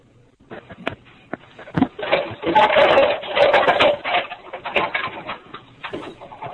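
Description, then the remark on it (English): A rumbling, whirring mechanical noise with irregular clunks and swells, steady through most of the few seconds, like an appliance running, heard over a band-limited call line. “Maybe the person who's trapped in the dishwasher?”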